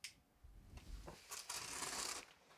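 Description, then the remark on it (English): Rustling and scraping as a gift package is cut and torn open: a few short crinkly bursts, then a longer, steady papery slicing sound, with no one talking. “He's opening the gift. He's cutting.”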